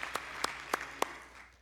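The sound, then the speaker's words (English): An audience claps in unison as a hand clap of praise to the Lord after a prayer, four sharp, evenly spaced claps in a steady rhythm over a soft background wash, with no talking. “Can we give the Lord one more hand clap of praise, everybody?”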